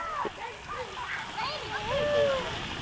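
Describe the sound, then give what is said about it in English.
Children shout and squeal over a steady wash of splashing water at a water fun day held to help kids cool off during the hot summer of 2018, their high voices overlapping throughout at a lively, busy level. “Those were the sounds from a water fun day organized to help kids cool off during the long, hot summer of 2018”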